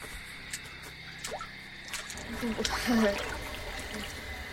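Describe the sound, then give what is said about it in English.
Soft sloshing and splashing of cold water as someone wades into a lake, with gentle irregular swishes that build slightly toward the end, and a faint voice murmuring underneath. “The water's so cold. Why is it so cold?”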